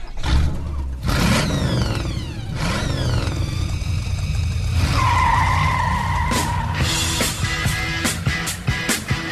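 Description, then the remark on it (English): A car engine revs hard with rising and falling pitch sweeps, then tires skid and squeal in a long, loud screech, followed by more revving. Intense throughout, with no talking. “Buckle up and start your engines.”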